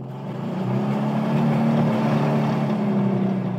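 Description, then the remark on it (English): The Porsche engine of a completely restored 1964 VW 21-window Samba van with hydraulics runs loudly and steadily, a deep throaty rumble that swells slightly and holds at a constant pitch for several seconds, with no voices. “It's a 1964, and it's called a 21-window Samba, but it's been completely restored. Okay. Hydraulics, Porsche engine. That's why Porsche it's so loud.”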